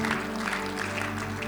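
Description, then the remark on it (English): A church audience in North Dakota claps their hands together for the Lord in a steady, dense wash of applause, loud and continuous, with a low sustained hum running underneath. “Let's give a hand clap to the Lord now.”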